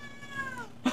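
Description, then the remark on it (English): A cat meows in a long, drawn-out wail that slides downward in pitch, followed by a sharper, louder burst at the end, with no talking. “Okay, right, so my cat right here.”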